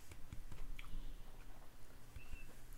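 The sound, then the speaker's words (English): Wet chewing of a soft quesadilla with squishy mouth sounds and occasional faint clicks, repeating irregularly for a few seconds with no talking. “That was sponsored by the quesadillas, and my mouth, it tastes so good. I'm trying to ask you this question, but I got to chew.”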